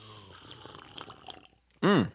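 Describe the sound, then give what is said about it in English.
A soft, wet slurping of hot coffee with scattered liquid sips, followed by a short, loud, satisfied vocal "ahh" whose pitch rises and falls. “we're having a lovely cup of coffee right now. Slurp coffee sound.”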